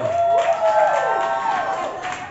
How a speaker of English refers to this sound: Applaud the poet. Keep your applause going.